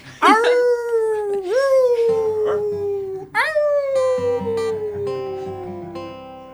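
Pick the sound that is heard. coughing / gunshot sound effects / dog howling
dog howling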